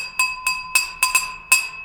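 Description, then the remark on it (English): Glasses clink together six times in quick, slightly uneven succession as a toast sound effect, each bright tap leaving a steady high ringing tone that hangs throughout. Clear, with no talking. “I think it's just glasses clinking.”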